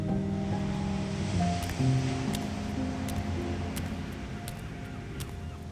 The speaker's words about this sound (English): Hear the ocean waves.